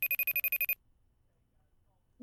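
A telephone rings for an incoming call with one short burst of rapid, warbling electronic trill, loud, then cuts off into near silence before a voice starts speaking at the very end.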